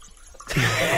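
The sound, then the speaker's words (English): A man urinating into a toilet: after a quiet moment, a loud, steady splashing stream of liquid starts abruptly and continues to the end, with no one talking. “He just listen to him pee.”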